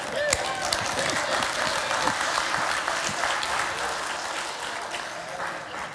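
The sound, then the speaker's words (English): An audience breaks into steady applause, many hands clapping in a dense, even patter that holds at a fairly constant loudness for several seconds before easing slightly at the end. “And that you're supposed to applaud there.”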